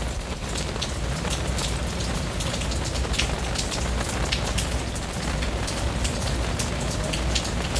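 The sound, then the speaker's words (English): Heavy rain pours down steadily, a dense, continuous hiss of drops pattering on surfaces, with no voices and no pauses throughout. “It's raining so much.”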